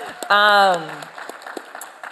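A small audience claps for the graphic designer behind Shakeout, in scattered, uneven bursts while one person lets out a loud, high whooping cheer that slides down in pitch early on.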